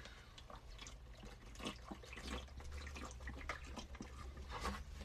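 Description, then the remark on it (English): Water is poured into a glass in a steady splashing stream that runs continuously for several seconds, with small bright trickles and gurgles over a low rumble; no one speaks. “Water, not vodka.”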